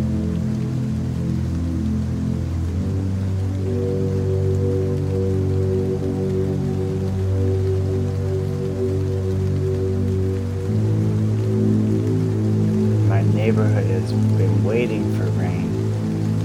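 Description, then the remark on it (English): Steady rain patters onto gravel in a barrio, a continuous texture of small clicks, with a low droning hum running beneath it throughout and a few brief higher chirps near the end. “it is raining in the barrio. You can hear it click clack on the gravel.”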